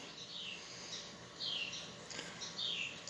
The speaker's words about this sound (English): Well, the birds chirping right now is fun, huh?